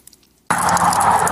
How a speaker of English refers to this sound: After officers drew a gun on her and placed her in handcuffs, they put her in a patrol car parked on the train tracks. This police video released Friday, and a train can be heard blasting its horn before crashing into the car.